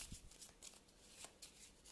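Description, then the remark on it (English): Playing cards being shuffled back into the encounter deck during a card game: a quick run of crisp, papery flicks and riffles, fairly quiet, with no voices. “I'm then going to play Close Call for two resources to shuffle that back into the deck. So I get shuffled back into the encounter deck.”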